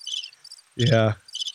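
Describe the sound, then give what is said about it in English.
Crickets chirp in short, high, pulsing bursts that come and go, briefly interrupted midway by a louder, low droning tone lasting under half a second before the chirping returns. “Well, I figured I'd get some crickets, you know, for that.”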